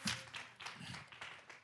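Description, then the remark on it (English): A church audience claps hands in praise in a loose, steady rhythm, roughly three claps per second, the sharp slaps sounding fairly soft, with no talking over them. “Give me a hand clap of praise this morning.”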